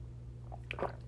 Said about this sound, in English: Ooh, I had to take a pause and drink some water. Hold on.